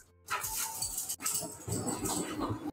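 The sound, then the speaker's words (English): A dog whimpers and gives short barks across a couple of seconds, steady, in a house, with no one talking over it. “I love dogs. I also love that we can definitely hear everything that's going on”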